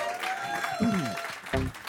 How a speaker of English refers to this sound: Please, everybody, give a round of applause for the panel tonight.